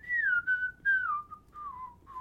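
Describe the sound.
Someone whistles a bouncy, catchy melody, a few short phrases that glide gently downward in pitch with brief breaths between them, clear and steady with no talking.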